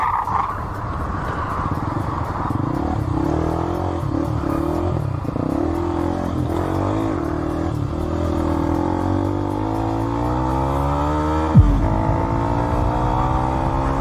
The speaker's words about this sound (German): Der Motorradfahrer unternimmt einen letzten Fluchtversuch.